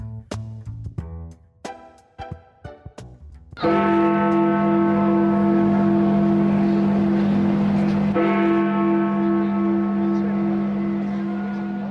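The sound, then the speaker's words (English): The deep bell of Big Ben tolls loudly, marking Brexit's formal completion, its rich hum ringing out for seconds before a second strike follows, after a brief stretch of softer, choppier tones. “Almost 100 days since the chimes of Big Ben marked that Brexit was formally completed”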